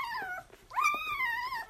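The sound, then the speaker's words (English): Lola, a tired golden retriever mother of days-old puppies, lets out two drawn-out, high-pitched whines, the second longer and rising slightly before tapering off, with no one talking. “and they're rushing, as much as puppies of that age can rush, to feed from their mum, Lola, a tired but proud golden retriever.”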